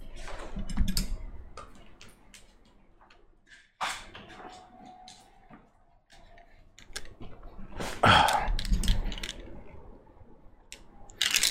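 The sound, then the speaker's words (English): Irregular plastic clicks and light clatter as a plastic twelve-sided D&D die is turned and handled, with a denser burst of rattling toward the end and a quieter stretch in between. “Oh, is it D12? Yeah, it's 12. So it's 12 sided.”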